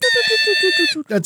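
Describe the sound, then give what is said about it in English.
A person imitates a hawk's scream with a loud, sustained, harmonic cry that wavers rhythmically for about a second, then breaks off into a rougher vocal burst. “That's my hawk scream.”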